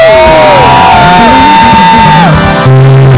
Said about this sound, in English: Somebody give God a 25 years anniversary scream!